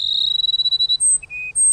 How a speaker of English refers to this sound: Carson sparrows have waited for the late summer rains to begin their courtship. Now the males sing their plaintive phrases almost nonstop.